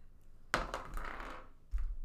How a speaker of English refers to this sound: Y'all are just tossing your dice at him.